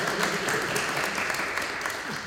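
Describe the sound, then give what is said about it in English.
A crowd claps steadily for a contestant who answered a quiz question correctly, a dense, even patter of many hands that holds at the same strong level throughout, with no voices on top. “Big round of applause.”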